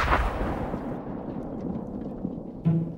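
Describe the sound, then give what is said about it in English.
An experimental explosion set off in a farm pond at a tobacco farm booms deeply at the start, then a long low rumble rolls on for seconds, with a second dull thump near the end. Muffled, with no voices. “And she sets off this experimental explosion.”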